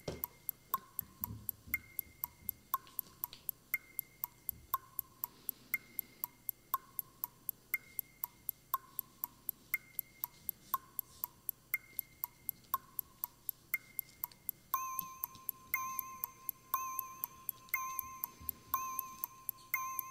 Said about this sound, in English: You have 30 seconds. Okay. Put on a 30 second timer.